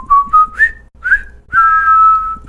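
A group whistles a bright tune together while marching: a few short rising notes, a brief pause, then a long held note, clear with no talking.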